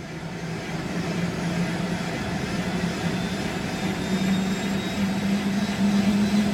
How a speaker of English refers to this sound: Yes, so we're in the helicopter now. It's a significantly more spacious aircraft than the tiny little electric airplane I was in a few moments ago.